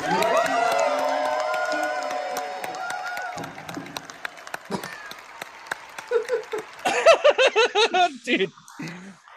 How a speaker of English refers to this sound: Dude, the mic drop, the people cheering you off stage because they don't want you there anymore is the most fucking like.